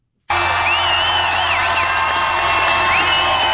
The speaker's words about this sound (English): Oh, my fault. That was just natural sound. That's just crowd noise.